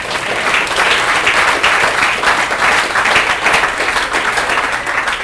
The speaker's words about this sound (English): Give the Lord a hand clap, man.